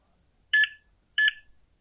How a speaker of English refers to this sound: The Sony machine began to make a terrible rotating and beeping noise. And the saloon patrons, if they did not want to destroy the screeching machine, they looked to steal it for scrap parts.